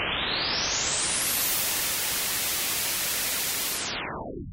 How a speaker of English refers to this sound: The same way that white light is a combination of every color, white noise is a combination of all the frequencies that we can hear.